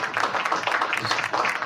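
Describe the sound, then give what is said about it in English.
A crowd claps in a dense, steady patter of many hands, moderately loud and continuous for the whole moment, with no voices standing out. “Which, by the way, the clapping, I don't know if it's the Foley at the place, sounds like Monty Python clapping, like when, you know, when they would go to stock footage.”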